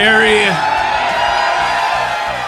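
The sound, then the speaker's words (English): A live crowd in Phoenix, Arizona cheers and whoops loudly, with a high rising whoop at the start over a dense, sustained roar of many voices that fades slightly toward the end. “A ferocious crowd in Phoenix, Arizona for today's Fantasy Footballers Podcast.”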